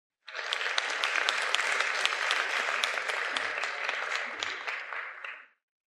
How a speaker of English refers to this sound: Folks, round of applause for all those people willing to read.